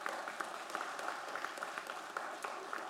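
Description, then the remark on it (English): An audience applauds steadily, a dense wash of many hands clapping at once with scattered sharper claps standing out, sustained at an even level throughout. “I'm not stopping you from clapping. You go ahead.”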